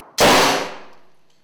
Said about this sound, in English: we obviously don't want to release pyro gas with him and pyrotechnics, so what we use is compressed air with rubber, crumb and foam rubber and a bit of Fuller's Earth just to give it simulate the explosion.